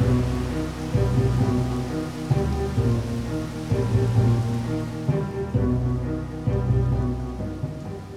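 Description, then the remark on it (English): Steady rain hisses throughout while low rumbling swells rise and fall every couple of seconds, like rolling thunder, over a sustained tonal drone. No one speaks. “After a bit of foul weather, and getting turned around by all the inlets, your ship hovers out into the open ocean.”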